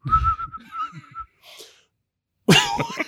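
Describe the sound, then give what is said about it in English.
A person's breathy, wavering failed attempt to whistle like little birds sputters for about a second, followed by a puff of air and then a loud cough or splutter. “I can't whistle.”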